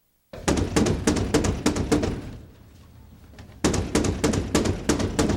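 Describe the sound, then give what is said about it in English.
Loud knocking by Al on the front door of the Bundy house as he tries to get in: a rapid series of sharp raps, a short quieter pause, then another insistent burst of knocks. “So we open with Al knocking on the front door of the Bundy house, trying to get in.”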